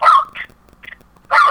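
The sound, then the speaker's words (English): A neighbor's dogs barking: two loud, sharp barks bracket a pair of quieter, shorter yips, with no talking, just a faint background hum between them. “No, we got the neighbor's dogs.”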